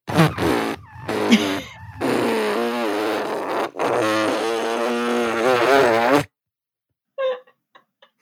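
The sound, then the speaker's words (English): A person vocally imitates the long, drawn-out fart of a dog named Coco with their lips, a buzzing, wavering raspberry lasting about six seconds with brief breaks, followed by a few faint clicks. “She'll sit on the back of my couch while I'm watching TV and just really let it rip and then act like I was doing it.”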